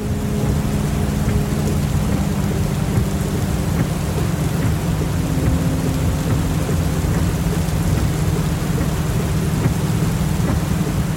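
Steady, heavy rain pours down without pause, layered over a deep, continuous rumble of thunder. No voices, just an even, enveloping storm at constant loudness throughout.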